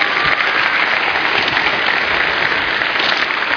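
A crowd claps steadily, a dense, even wash of many hands applauding at a constant, fairly loud level with no voices breaking through.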